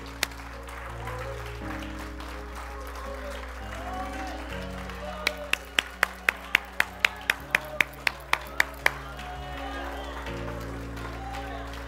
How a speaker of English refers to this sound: Could we give Jesus a big clap offering? Come on.